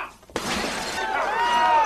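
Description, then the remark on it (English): A sudden loud smash as a Sanyo VHS remote-control VCR is broken apart, bursting into a sustained shattering crash with bright, ringing fragments that keep clattering and resonating for over a second, unaccompanied. “And by the way, we at Federated feel that smashing perfectly good merchandise is shameful and overly destructive.”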